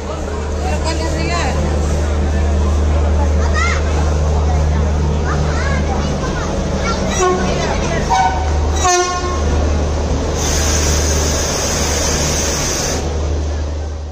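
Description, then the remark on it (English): A crowded Central Railway Station in Chennai hums with overlapping voices and rumbling trains, and a loud train horn blares near the end over the steady din. “Our journey today starts with Central Railway Station.”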